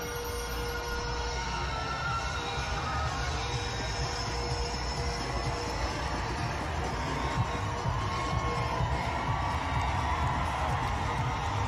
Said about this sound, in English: People cheering madly.